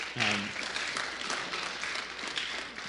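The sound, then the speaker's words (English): An audience applauds steadily for the leader of a youth sports program, a dense wash of many hands clapping at an even loudness, with a brief voice heard at the very start before the clapping takes over. “And from that first fall until now, we've seen the program grow from just over 50 youth to well over 100 youth and over 70 families, which I think we should give him a round of applause.”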